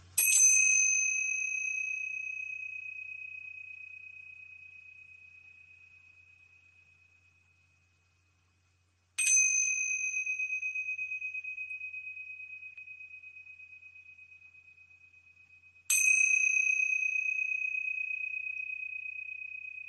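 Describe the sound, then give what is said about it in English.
Tingsha bells are struck three times, each producing a bright, clear metallic ring that shimmers and slowly fades over several seconds. The chimes are alone, with no talking. “All right, so just take a nice deep breath with me as I ring the tincture bells to clear out that energy and create a beautiful space for our channeling.”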